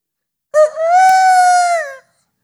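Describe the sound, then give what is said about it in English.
A single loud rooster crow rings out, a sustained harmonic call lasting about a second and a half before cutting off, with no other sounds around it. “the rooster crowed.”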